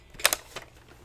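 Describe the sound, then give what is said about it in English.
Three or four crisp key clicks tapped with fingers on an alligator keyboard, moderately loud: two quick taps, then a softer one after a brief pause, with no voices. “Don't compare to this alligator keyboard when it's got my fingers on it.”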